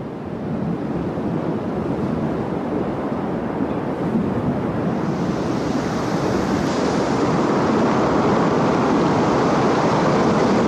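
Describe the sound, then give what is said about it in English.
Powerful ocean surf roars continuously, a dense wash of crashing waves that swells louder toward the end, with no voices, just the relentless churning rumble of heavy water. “The sea is dark and wild and scary, and it surges with a fierce and unpredictable power.”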